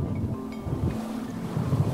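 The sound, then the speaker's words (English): A boat motor drones steadily while wind buffets the microphone and water rushes past the hull as the boat cruises along Old Fort Bay, a continuous low rumble with no voices. “The best view, however, comes by circling it in a boat.”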